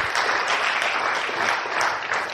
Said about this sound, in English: Yeah, let's give Jesus a round of applause because he's so good. Thank you, Jesus.